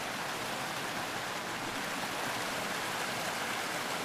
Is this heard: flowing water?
yes